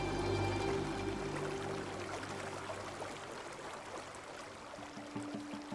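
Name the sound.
river water rushing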